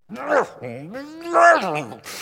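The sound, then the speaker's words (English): A man's voice mimics a muzzled dog straining to bark, producing a few strangled, groaning, closed-mouth yelps in quick succession, fairly loud. “Have you ever heard a dog bark with a muzzle on?”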